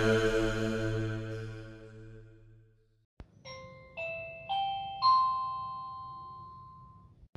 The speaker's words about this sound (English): I just heard the doorbell.